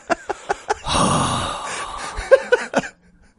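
A man makes a long, drawn-out exaggerated sigh framed by short throaty clicks and rasps of throat clearing, fairly loud, with no talking.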